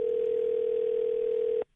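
A steady telephone dial tone hums at an even, moderate level for about a second and a half as radio station New Country 103.1 places a call, then cuts off abruptly, leaving near silence. No voices are heard.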